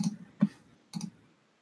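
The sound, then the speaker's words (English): Three quick clicks of someone clicking on a computer, fairly quiet, with an irregular gap between them and no voices. “Is there anything else you want to say as you're clicking on something?”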